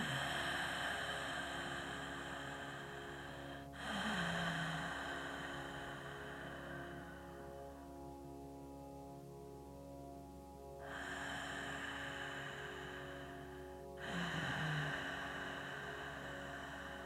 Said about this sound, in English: And let's do a couple more breaths like that. I want you to just listen to me. Try and breathe along with me. Inhale.